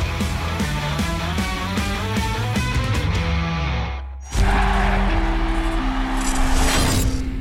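Cars roar past with loud, steady engine noise and squealing, skidding tires, following a short burst of music-like tones that cuts off abruptly.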